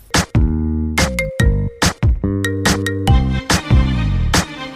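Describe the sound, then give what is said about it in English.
A polyphonic ringtone of a little flip mobile phone plays a bright, synthetic melody of quick chord stabs and short notes in a bouncy rhythm, loud with no talking. “my mum had that as her ringtone, but it was on the little flip phones, so it wouldn't be the actual song. It would be like the polyphonic ringtones.”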